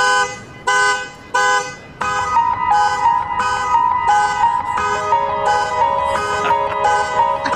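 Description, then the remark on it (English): A neighbor's car alarm honks loudly in short rhythmic bursts. Then a TikTok musician plays a sustained keyboard melody he composed over the alarm, with steady held notes shifting pitch as the pulsing continues underneath. “Neighbor's car horn was our alarm is going off. Gets the keyboard out and composes a beautiful listenable tune to the car owner.”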